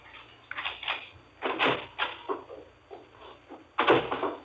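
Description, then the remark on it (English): A man's footsteps come up the walk to a house's front door, followed by the clatter of the front door being opened; the sounds come as a short series of distinct knocks and thuds with no talking. “heard him chuckle, then his steps up the walk to the front door.”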